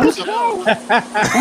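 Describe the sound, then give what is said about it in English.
Fish frying in a pan gives off a steady, crackling sizzle, a bright hiss that keeps going underneath a person talking. “Yeah, that was my frying fish.”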